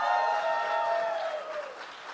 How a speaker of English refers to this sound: And, of course, Chris Jericho. Let's give him applause.